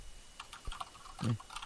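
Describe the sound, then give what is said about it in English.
Loud, clicky mechanical keyboard typing, a quick irregular burst of sharp keystrokes with one heavier, thudding press near the end and no talking. “He enjoys fucking the loud-ass clicking noise.”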